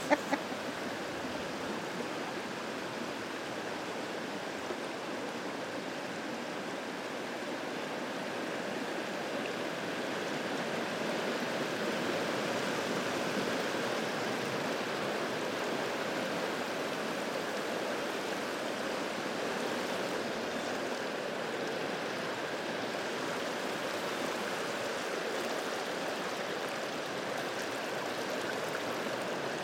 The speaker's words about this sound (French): Quand la crue des eaux arrive, là, on regarde la rivière et on dit « Ouf, la rivière est folle!